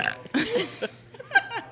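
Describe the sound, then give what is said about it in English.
A person burps on demand: a loud, drawn-out burp rumbles, followed by a few short voiced bursts that sound like chuckling. “can you burp on demand?”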